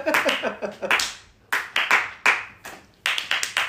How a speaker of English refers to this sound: Slow clap.